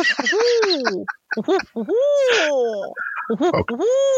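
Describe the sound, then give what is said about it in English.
A human voice imitates a barred owl's call, a loud run of whooping hoots with rising and falling pitch, closing on a long, drawn-out descending hoot. “I have barred owls too, and we also have a red-tailed hawk now.”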